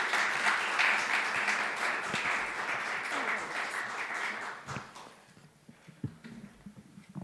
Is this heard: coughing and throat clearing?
no